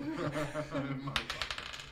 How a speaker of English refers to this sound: So, these are trick dice. They always land on 1.